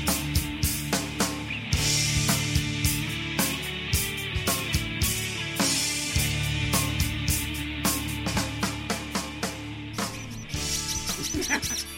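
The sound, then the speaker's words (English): A squeaky toy is squeezed over and over, its high, shrill squeaks coming in quick, uneven bursts against a dense, busy background that runs throughout. “Squeaky toy.”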